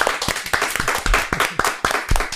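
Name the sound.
clapping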